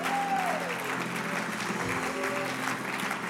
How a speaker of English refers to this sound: Come on, if you believe that today, why don't you give God a big shout and a clap and thank him.